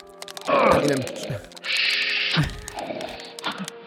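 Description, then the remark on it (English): Loud snoring in repeated cycles from a man asleep sitting in his chair: a rough, rumbling inhale followed by a long hissing exhale, then another rasping snort, with faint mechanical clicks and thumps underneath. “You can hear him snoring. Oh my god, that's so loud.”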